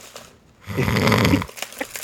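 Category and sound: vocal imitation, imitated snoring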